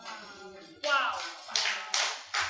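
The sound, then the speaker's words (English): Four loud, sharp claps from a man at the back, in an uneven rhythm, each ringing out briefly, following a quieter stretch of faint murmuring voice and tones. “I love that brother clapping at the back.”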